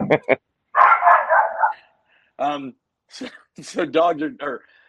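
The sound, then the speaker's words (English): A neighbor's dog barks in a few sharp bursts, then lets out a longer, drawn-out whining yelp before more quick barks, loud. “Dogs are dogs. Hey. Neighbors.”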